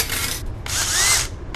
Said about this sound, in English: The door won't open when I hit the button! The computer must be locking it! I have to open it manually.